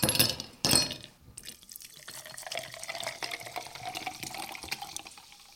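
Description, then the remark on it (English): Sparkling mineral water is poured into a glass, starting with a couple of bright splashy bursts and then settling into a steady fizzing, crackling stream, with no voices. “Water would be fine. I have sparkling mineral water.”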